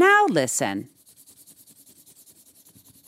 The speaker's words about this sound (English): Can you hear what Cowie's doing? She likes coloring in her coloring book before bed.